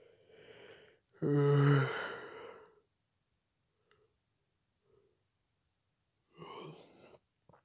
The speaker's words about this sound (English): If you couldn't tell, I just yawned really long and really, really, really, really big. The reason for that is because right now it is 12:50 a.m. It's almost 1 a.m. in the night, okay? So I do feel sleepy